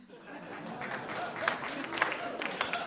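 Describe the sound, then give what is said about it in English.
An audience claps steadily for about three seconds, a dense patter of many hands with sharper individual claps standing out, while a murmur of crowd voices sits underneath. “And for the people out there that did not clap, you need to work on your geek cred because our title is a famous line by the character Gollum from Tolkien's Lord of the Rings.”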